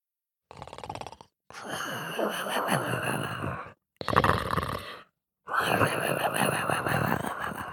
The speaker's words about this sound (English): The dog, with eyes as big as towers, plonked himself down on the tiny apron and fell asleep, with each snore sounding like an approaching thunderstorm.